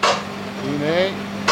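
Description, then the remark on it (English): Two loud metallic bangs of heavy-duty crane chains snapping taut as a crane begins to heave a mikveh up off the ground, one at the start and one at the end, with a rising, strained creaking groan between them. No voices. “As the crane began to heave the mikveh up off the ground, the heavy-duty chains were pulled taut. Those are the loud bangs you just heard.”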